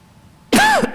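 A single loud cough lands right on the microphone after a moment of near silence, a harsh burst lasting about a third of a second with a rough, throaty edge.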